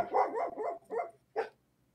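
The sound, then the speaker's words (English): A dog barks in a quick run of four or five fairly loud barks, then a short pause before one final sharp bark. No one speaks over it. “Special guests. It just dawned on me. I don't know your dog's name.”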